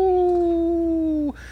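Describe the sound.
A human voice imitates a wolf with one long, loud howl that holds a steady pitch, sags slightly, then cuts off abruptly after about a second, in a reading of Chris in the Morning from the show Northern Exposure.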